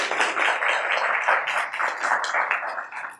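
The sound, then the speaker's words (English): An audience at an Engage ICT event applauds VolunteerKansas.org for its sponsorship, many hands clapping together in a dense, steady patter that stays fairly loud for about three seconds, with no talking over it. “So let's have a round of applause for VolunteerKansas.org for sponsoring.”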